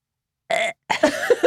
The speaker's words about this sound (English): You never learned how to burp on command?